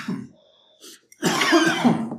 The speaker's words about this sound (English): I really hope this ends up being more than just us coughing at you guys.